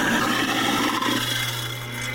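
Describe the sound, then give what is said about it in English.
A kitchen sink garbage disposal (garburator) runs steadily as a kitchen item used to make a song, a continuous low motor hum under a coarse, rasping grind that holds at an even, fairly loud level for about two seconds, with no voices. “I'm going to use the posh sink garburator we've got up here.”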